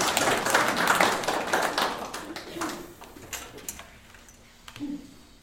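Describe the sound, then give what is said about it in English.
An audience gives a hand clap for several gentlemen, a dense burst of applause that gradually thins into scattered individual claps and fades out, with a faint murmur of voices underneath. “Give these gentlemen a hand clap.”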